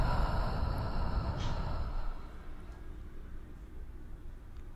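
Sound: slow deep exhale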